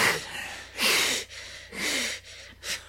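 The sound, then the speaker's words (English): A cat breathes hard after playing, standing on a person's leg, with several quick, raspy huffs and pants in an uneven rhythm and brief pauses between them. No one speaks. “Yep, the cat's breathing hard from playing. You probably can hear him.”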